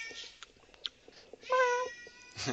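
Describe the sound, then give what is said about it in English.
A cat going berserk lets out a loud, drawn-out meow after a few faint clicks and rustles, followed by a second shorter cry at the end. “Sorry, the cat is going berserk, and I was trying to help.”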